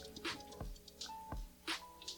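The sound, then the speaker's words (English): Wet slurping and gulping sounds as people knock back shots of liquor, with a couple of dull thuds like small glasses set down on a table. No talking. “let's take this shot, fellas, man. Salute to both of you guys. To the brim. Cheers, guys.”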